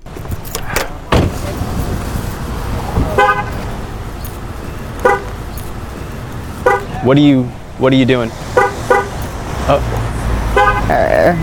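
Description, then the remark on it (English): Several short, loud car horn chirps sound one after another as a car is locked, amid steady outdoor background noise, with a brief thud or click early on and a voice speaking briefly. “Why are you locking your car?”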